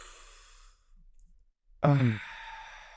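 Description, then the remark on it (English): A deep, airy inhale, a brief pause, then a long audible exhale that turns into a voiced, relieved sigh before trailing off. “Take a deep breath.”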